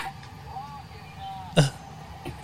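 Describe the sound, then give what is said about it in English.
A single sharp bark from a dog, followed by a fainter second yelp, over a quiet outdoor background with faint murmuring. “Just barking.”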